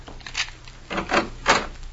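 A key scrapes and rattles in a door lock, three or four rough grinding bursts spread over two seconds, moderately loud, with no voices.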